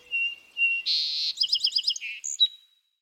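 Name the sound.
bird song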